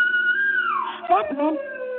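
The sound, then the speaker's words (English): A state prison siren wails in the distance at night, signalling that a prisoner has escaped; its long steady tone slides downward in pitch before settling lower, with a low hum running underneath throughout. “And then I heard that siren in the distance.”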